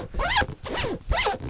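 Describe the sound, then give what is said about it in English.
A zipper on a computer bag is pulled in three quick, raspy strokes, fairly loud, each with a rising whir, as the bag is zipped shut. “Please don't zip up anything while we're Here's. That's my computer bag.”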